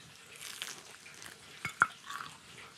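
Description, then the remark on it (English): Crispy fried chicken skin crackles and shatters as a little piece of the skin is peeled off: faint, dry crinkling builds to two sharp, brittle snaps in quick succession, then a little more soft crackling. No one speaks. “Yeah, the skin just shatters.”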